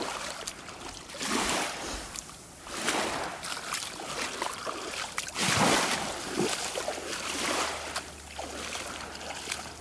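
Small waves lap and wash against a beach in Newfoundland in repeated soft surges every couple of seconds, with a faint low rumble underneath and no voices.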